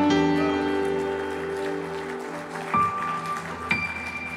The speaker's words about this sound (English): Come on, let's give the Lord a hand clap of praise.